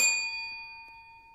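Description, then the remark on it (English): A single bell is struck once, giving a bright, clear ding whose pure ringing tone lingers and slowly fades over about a second. Fairly loud, with no voices. “By the way, people ask, why do I ring the bell? I ring the bell to go, remember that, make it stick, ding, make it stick.”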